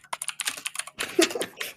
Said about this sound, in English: You can hear the clacking of the keyboard.